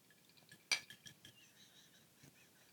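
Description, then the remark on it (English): Two glasses of cocktails clink together once in a toast while people sit on a bed, a bright ringing tap, followed by a few faint lighter clinks and soft handling noises. “There's no top. And it's in glass. And we're sitting on my bed.”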